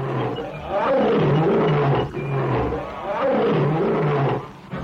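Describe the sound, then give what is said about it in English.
A tiger mother of two 7-week-old cubs at Whipsnade zoo roars loudly in long, growling bursts, with a brief pause between two sustained roars and a short snarl at the end. No one speaks. “Pauline, their proud mother, tells you what she thinks of all this publicity”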